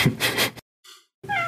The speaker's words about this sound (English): Nice cat. I know, right? I'm going to shoo her away. Go away. Go away.